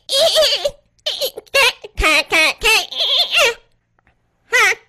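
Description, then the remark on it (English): A voice imitates a fax machine with a string of loud, high, warbling squeals and chirps in short bursts, broken by a pause before one final warble. “It's what I remember the fax machine sound like.”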